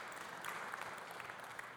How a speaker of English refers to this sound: Some of you are clapping because I just told your story.